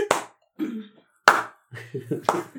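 A slow clap: three sharp, loud hand claps spaced about a second apart, with indistinct voice sounds filling the gaps between them.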